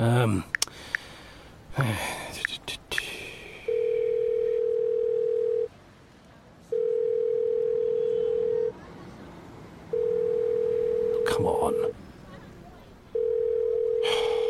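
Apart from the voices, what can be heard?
telephone ringing tone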